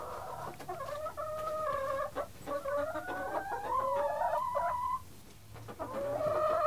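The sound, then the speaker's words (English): A hen clucks and trills in a steady stream of low, warbling murmurs, with a few sharper notes breaking through, while Vaseline is rubbed on its comb and wattles to keep them from freezing in winter. “Gonna rub the Vaseline right on their little comb. Good girl, Boyanka. And then on the wattles.”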